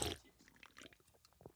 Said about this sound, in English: Do we slurp into the mic? Is that part of it? Nice. Yeah, it's a good slurp, yeah.